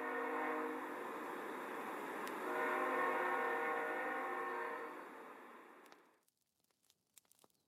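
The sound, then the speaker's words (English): A morning train arriving blares its horn loudly and steadily for about six seconds, layered tones sustained over rumbling rail noise, then cuts off, leaving faint scattered clicks and clatter. “Ah, sounds like the morning train arrived just in time for the end of our tale.”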